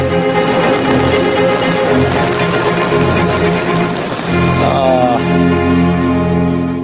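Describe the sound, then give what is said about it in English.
Steady rain patters densely on a hard surface, a continuous hiss of drops with sustained tonal music running underneath throughout; no one speaks. “It's raining.”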